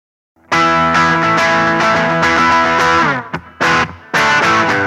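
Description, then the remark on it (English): Electric guitar through an amp, with the reverb turned on a little and the gain turned back down, plays loud strummed chords that ring out steadily, then two quick choppy strums and another sustained chord, with a light reverb tail. No voices. “While we're here, turn on the reverb a little bit, turn the gain back down again.”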